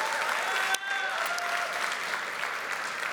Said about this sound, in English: I don't know if they heard you or not, but just when you pick up your kids later, let them know that we were cheering for them and thanking them.